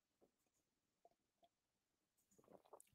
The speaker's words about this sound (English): Now, before I go further, I need to take a sip of coffee.